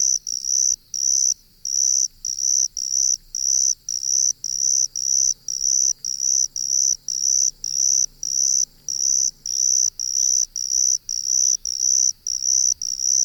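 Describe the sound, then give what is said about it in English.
A cricket trills in steady, evenly spaced bursts, each lasting about half a second with brief gaps, loud against a quiet background with a faint low hum. Recorded by Lang Elliott and Will Hirschberger for the CD The Songs of Insects. “Lang Elliott and Will Hirschberger recorded these trills for their CD, The Songs of Insects.”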